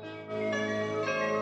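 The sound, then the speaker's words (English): The More You Know public service announcement chime jingle rings out on its own, bright bell-like tones layered into a shimmering, sustained chord that swells slightly and holds steady for about a second and a half. “Can you play the More You Know chime after that story?”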